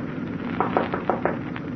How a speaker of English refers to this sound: At exactly 4:30, I knocked on the captain's door.